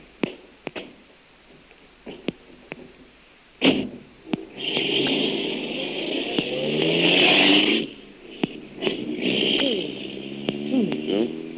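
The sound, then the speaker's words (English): A few clicks and a sharp thump, then a car engine catches and revs, its pitch rising and falling as it pulls away, with a steady rushing hiss throughout. “Here's my car”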